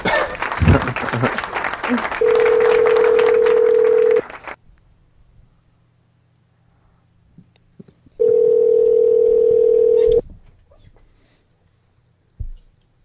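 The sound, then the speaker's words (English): Applause fades as a phone line tone sounds: two steady, mid-pitched two-second tones separated by several seconds of silence, like a call ringing out, as a man who just hung up is called right back. “Here, let's call him right back.”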